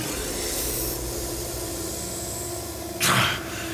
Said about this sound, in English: He tried to cry out, only to realize his voice had become a hiss as well.